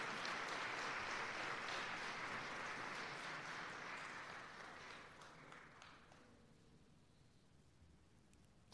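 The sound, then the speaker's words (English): An audience applauds the Lily Kai Dance Company after its dance performance at a ceremony, a dense crackle of many hands clapping that holds steady and loud for about five seconds, then thins and fades away. “Okay, one more round of applause for the Lily Kai Dance Company.”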